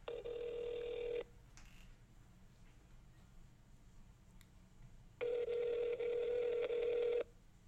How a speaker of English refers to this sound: So let's start off with a call to someone who's not expecting a call today. Let's do this.